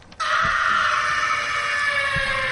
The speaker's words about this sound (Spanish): Al fondo del pasillo se escuchó un grito.